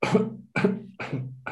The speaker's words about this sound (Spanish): Tos. Tos, muy bien. Tos.